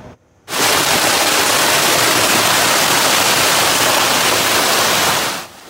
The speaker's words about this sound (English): Severe weather. This was the scene in Innisfil this afternoon. Significant hail pummeling this backyard.